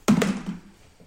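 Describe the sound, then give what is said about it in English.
A die clatters against a pencil: a sharp thunk followed quickly by a second tap and a softer knock, with a short low resonance fading out in under a second. “I need to stop rolling against my pencil.”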